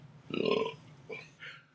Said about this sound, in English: I got a little more orange on the burp.